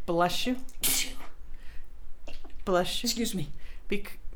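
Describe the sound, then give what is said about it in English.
Two sneezes, a couple of seconds apart. Each opens with a voiced intake and ends in a sharp, breathy burst. “Bless you.”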